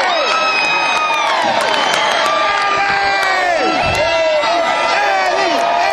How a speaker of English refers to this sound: As you can tell, this is a energized crowd. Everybody's in the place going crazy.